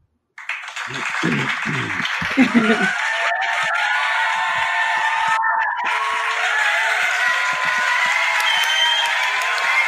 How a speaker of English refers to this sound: And the crowd goes wild.